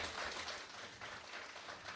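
A round of applause: many hands clapping in a dense, steady patter that holds at an even level for the full two seconds, with no voices over it.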